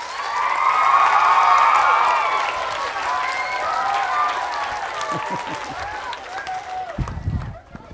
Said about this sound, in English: But for now, without further ado, let's give a big hand to Tony Bradman.